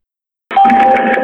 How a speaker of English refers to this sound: Yeah, there's the beep in the beginning of the phone call is the 911 recording device from the bygone era of 2013. It's on their end.